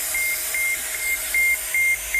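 A steady hiss of white noise with a high electronic tone beeping on and off in short, irregular pulses, several beeps over a couple of seconds, loud, with no voices, played from a computer.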